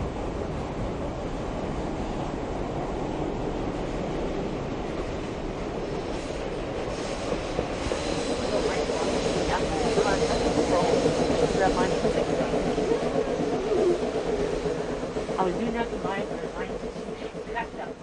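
A train rumbles steadily along the tracks with a broad, continuous roar, growing louder midway, while faint metallic squeals and clanks rise above the rolling noise.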